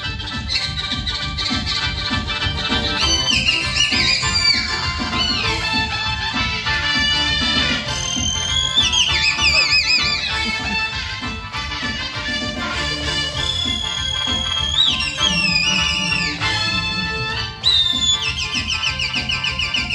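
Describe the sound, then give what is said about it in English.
A Chinese man plays a small whistle held in his mouth, trilling and swooping in shrill, bird-like glides, playing a continuous melody over loud backing music, with quick warbles and sliding pitch bends throughout. “He's got a little whistle thing in his mouth, but let's just see how epically he can control this thing.”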